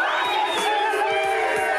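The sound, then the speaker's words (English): A crowd screams 'Talking Seaweed' loudly all at once on a count of three, a dense, sustained roar of many high-pitched voices with no pauses, steady and intense throughout. “So on the count of three, you gotta be louder than them and scream Talking Seaweed.”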